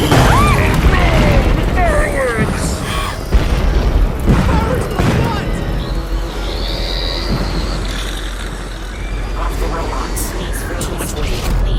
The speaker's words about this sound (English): Oh man, I hope somebody fucks up the fireworks.